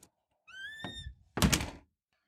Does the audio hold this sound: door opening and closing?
yes